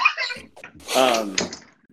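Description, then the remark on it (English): A door being shut and locked: a creaking squeal as it swings shut, followed by a sharp clack and a brief rattle of the latch, then quiet. “Sorry, I'm going to lock this door even better.”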